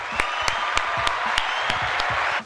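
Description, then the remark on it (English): A clapping sound effect introducing a show's Dad Jokes segment: sharp, evenly spaced claps, about nine of them in a steady rhythm, over a dense wash of crowd applause that holds loud throughout and cuts off at the end. “Welcome to the segment of the show called Dad Jokes. Good. I think there's a clap.”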